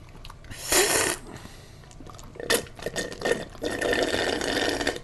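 Wet, hissing slurps of a drink: a loud slurp early on, a few shorter sucking bursts, then a longer steady slurp to the end, with no talking.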